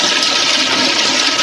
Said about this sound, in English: You can de-jerkify him by sticking his head in the toilet and flushing.